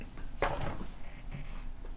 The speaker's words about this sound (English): You hear something very big shift around. Sounds like a door opening. Some gears turning, another thing shifts open. And then one of the walls near you opens up to reveal this long hallway down to Holodeck 13.